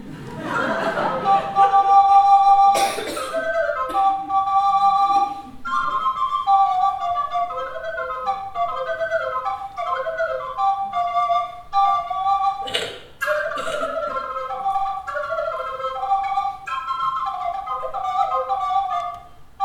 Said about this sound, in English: Translation into English, but in Scots I tend to call it a daft wee whistle. So here's a tune for you, and I know you all sing. So this is Over the Sea to Sky.